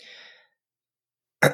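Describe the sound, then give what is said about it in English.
A soft, breathy exhale fades out, followed by a second of silence and then one short, sharp cough that comes in abruptly and is cut off at the end. No one speaks. “She'll let out a slight cough and then almost as a presentation.”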